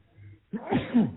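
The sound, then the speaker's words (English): A single sneeze erupts after a brief quiet moment, a sharp intake followed by a loud burst of breathy noise that fades quickly. “Bless you. Bless you again.”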